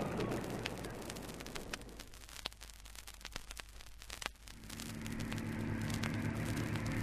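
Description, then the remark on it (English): Noisy, crackling rumble that settles into a steady, droning engine hum about two-thirds of the way through, growing fuller and louder as Bertie starts up the aircraft engines and warms them for a few minutes. “Bertie's starting up. I know. Keep rowing or we'll go round in a circle. But what's he thinking? We'll have to warm his engines for a few minutes, so we might make it.”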